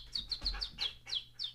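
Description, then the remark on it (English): A person whistles an imitation of bird chirping as a sound effect: six quick, high, downward-sliding chirps in a steady rhythm, moderately loud, with no talking. “I will say, like, I'm not eligible to be in the show, but we were entertaining the idea of giving me one small part, and that was as the bird sound effect, because I make a good bird sound effect.”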